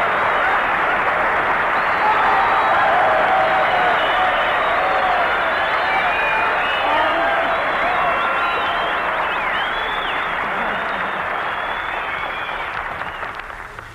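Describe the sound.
Sustained, loud studio audience applause as screen actress Virginia Bruce takes a bow, a dense wash of clapping with some cheering voices mixed in, holding steady before tapering slightly at the end.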